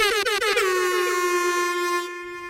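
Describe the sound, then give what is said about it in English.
A loud air horn blares, stuttering in a few quick bursts before settling into one long, steady blast that holds for about two seconds. No one speaks. “So it may be an air horn, but I think it's just a puppet.”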